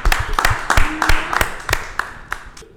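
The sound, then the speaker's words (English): An audience claps in a steady, even rhythm, about nine sharp, crisp claps in three seconds, with a faint wash of noise beneath them and no talking, trailing off slightly at the end. “Ladies and gentlemen, clap it up.”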